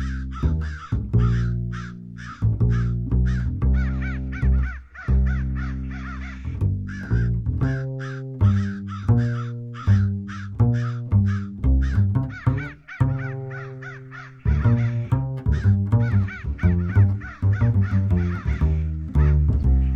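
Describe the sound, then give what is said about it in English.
Crows caw loudly, a dense run of harsh calls in quick rhythmic succession that barely pauses for twenty seconds, with no voices. “on to our next segment we like to call Crow's Feet. With KLAW's very own cronies.”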